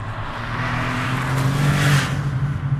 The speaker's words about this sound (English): your first thing would be say, that was a car. You wouldn't go, it went vroom, vroom, vroom, vroom.